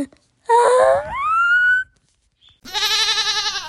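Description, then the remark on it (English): A human voice imitates screaming goats with two loud, harmonic bleating wails: the first rises in pitch and stretches out, and after a short pause a second, quavering cry follows. “I have an interesting scream.”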